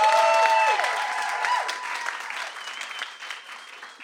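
An audience at an author reading at Skylight Books claps for the author in a dense, sustained wash of applause that gradually thins and softens over a few seconds, with no one speaking.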